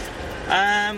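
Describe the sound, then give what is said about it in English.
A fast car's engine rumbles as the driver pulls out of a tight parking space, growing louder about halfway through into a steady, throaty hum with a strong tonal drone, held evenly to the end. “Listen to that. Oh my god. I'm feeling a rumble in my tummy.”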